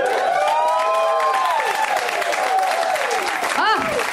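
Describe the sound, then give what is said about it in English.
A crowd applauds the sketch group Boat, clapping steadily and loudly while voices whoop and cheer over it, with rising and falling shouts and a sharp whistle-like yell near the end. “You guys, please, do you have in your hearts for one more amazing act?”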